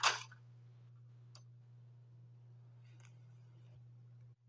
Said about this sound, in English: Patrick opens up the cash register.